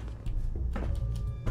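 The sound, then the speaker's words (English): In a video game, a door opens with a couple of dull thunks and a brief scraping rush, set against a steady low mechanical hum. “Oh, a door.”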